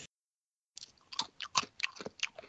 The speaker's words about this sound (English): Stop chewing with your mouth. Yummy. Those sound like Cheetos.